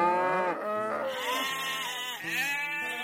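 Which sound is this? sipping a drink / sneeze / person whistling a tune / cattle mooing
cattle mooing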